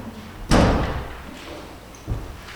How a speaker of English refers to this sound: just a second, let me shut this door.